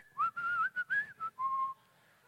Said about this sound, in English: What are you whistling about?